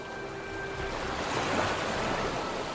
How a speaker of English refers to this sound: That night, I sat out on the front deck and watched the freezing cold ocean make waves with the wind.